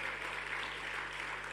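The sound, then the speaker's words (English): A crowd at a Thanksgiving convention claps steadily, a dense, even patter of many hands that holds at one level throughout, with no voices over it. “Your clapping is not interesting.”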